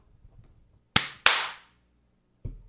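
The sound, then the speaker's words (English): Two sharp, loud hand claps in quick succession, marking the return from a break, each ringing briefly before fading, with a soft low thump following a moment later. No one speaks. “Every time I do that clap”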